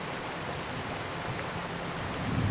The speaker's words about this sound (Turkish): Bunu düşünürken şimşek çaktı. Kafamı kaldırdım. Suratıma bir yağmur damlası çarptı. Gökyüzü bir anda ipinden boşanıp etrafı ıslatmaya başladı.